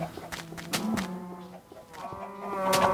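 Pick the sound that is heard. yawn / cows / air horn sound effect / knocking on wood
cows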